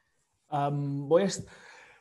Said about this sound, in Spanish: Voy a estornudar. A ver, gracias.